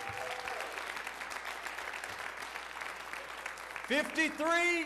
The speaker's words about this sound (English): Would you give her a hand clap today?